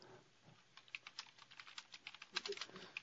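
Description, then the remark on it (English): Rapid keyboard typing, a quick stream of light clicking keystrokes, irregular in rhythm and fairly quiet, with no voices over it; someone typing a message to a radio station engineer. “And I'm still typing to the station engineer and so forth.”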